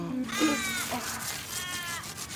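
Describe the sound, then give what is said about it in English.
Two drawn-out, slightly descending hawk calls ring out one after another, thin and whistling, over a steady outdoor hiss, with no voices. “Hawks.”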